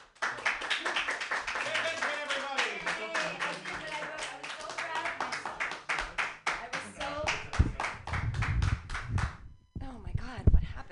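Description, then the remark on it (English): An audience claps steadily for several seconds, a dense run of sharp hand claps that thins out near the end before a few final claps and some murmured voices. “Okay, clap for me.”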